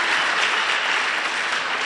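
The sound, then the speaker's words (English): A church audience claps together on a morning service in steady, dense applause that fills the space evenly, loud, with no voices standing out above it. “If you are happy, encourage me with a hand clap.”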